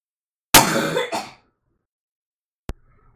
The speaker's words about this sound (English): That was like a shotgun blast cough.